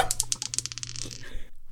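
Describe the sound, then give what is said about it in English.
Dice clatter across a hard tabletop in a quick burst of sharp, bright clicks that slow and taper off as they settle, with no talking, rolled for a dexterity check in a tabletop role-playing game. “Roll a dexterity check with that bold claim.”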